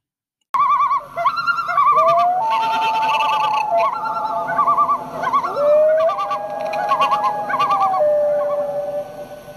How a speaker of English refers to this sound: So, but there's nothing better on a calm spring night when the sun is setting and it just feels good to be outside and to hear those iconic loon sounds over the water. Yeah, it's pretty special.